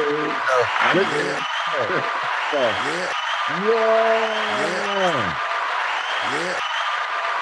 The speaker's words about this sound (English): I don't know if you hear the applause there, man.